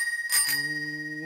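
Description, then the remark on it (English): A bell rings with a bright, metallic ding, its high tones ringing on steadily after a quick double strike, while a lower, steady humming tone sets in beneath it. “Woo, let me ask you, is it ringing?”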